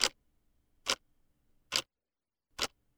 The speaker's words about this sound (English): The bedroom clock stops ticking.